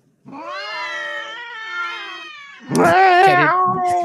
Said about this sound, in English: Cat orgy.